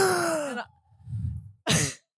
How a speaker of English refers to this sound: That wasn't a big enough gasp. We need a big gasp for everyone.